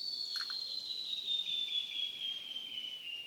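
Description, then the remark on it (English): A continuous, shrill insect drone hums steadily throughout, slowly dropping slightly in pitch, with a brief frog-like call breaking in near the start. Frogs and insects at the desert reservoir of Barker Dam, filled by unusually heavy rains. No voices. “Months before Payne captured that transformed ecosystem at Barker Dam, unusually heavy rains filled the dam's reservoir, drawing in birds, frogs, and insects he'd never heard there before.”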